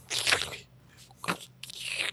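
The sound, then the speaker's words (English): Someone crunches seaweed chips: three crisp, crackly bites, a long one, then a short sharp snap and another extended crunch, with no talking in between. “I do need to take some of my seaweed chips.”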